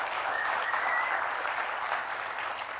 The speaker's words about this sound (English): So right now I'd like us to give a round of applause to the helpers. Yes. Yes.